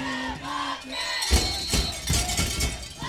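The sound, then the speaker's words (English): A crowd on the Bobcats' side of the field at a football game breaks into loud cheering and yelling, a dense roar of many voices with sharp bursts, after a brief quieter stretch of tonal murmur at the start. “Cheers raining from our side of the field.”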